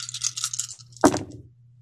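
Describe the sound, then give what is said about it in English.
Six dice, rolled for a stamina plus composure roll, rattle briskly in a cup or cupped hands for under a second, then spill out with a sharp clatter that quickly dies away, fairly loud over a low steady hum. “Stamina plus composure, it would be 6 dice. Let's see what we can do.”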